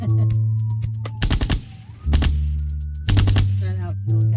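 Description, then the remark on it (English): Three short bursts of rapid gunfire crackle out loudly in a neighborhood, spaced about a second apart, over a steady low hum and a faint wavering siren-like tone. “Lots of gunshots around here.”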